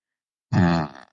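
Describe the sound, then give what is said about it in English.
After a moment of silence, an Amazon Alexa smart speaker, asked to fart, plays a single short, buzzy fart sound effect lasting about half a second and sputtering out at the end. “now say Alexa fart.”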